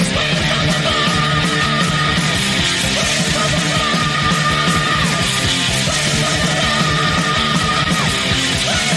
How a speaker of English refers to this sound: Scream, that's more like a growl.